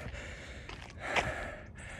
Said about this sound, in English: Next, going up a very steep hill. So I'm breathing like a locomotive, huffing and puffing here.